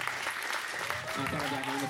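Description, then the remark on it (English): A crowd applauds steadily for a panel, a dense wash of clapping throughout, with a voice speaking over it in the second half. “Give a nice big round of applause for the panel here.”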